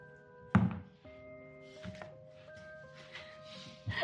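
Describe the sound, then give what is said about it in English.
Three heavy, hollow wooden thuds of a quarterstaff knocking on a large, loud door in a cave, echoing, spaced unevenly over a few seconds, with a steady humming musical drone underneath. “As you knock, you just hear the sound of your knocking echoing in the cave that you're in.”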